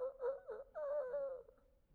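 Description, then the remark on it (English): A person imitates a rooster crowing: a few quick rising syllables, then one long, held, wavering high note that fades out. The voice is loud and stands alone, with no talking. “Probably the one thing in Peter's life that he probably struggled with after he got his heart right with God was every morning when he heard the rooster go.”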